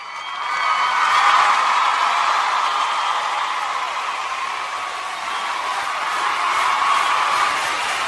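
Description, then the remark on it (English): Sustained recorded applause, played for mothers: a dense, steady wash of clapping that swells in after a brief fade-in and holds at a fairly loud level throughout, with no voices. “I really do hope some moms out there stand up and take a bow. when we play that applause, because you deserve it.”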